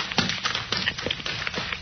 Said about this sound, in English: There's a man running up the road, past the two fellas trudging home.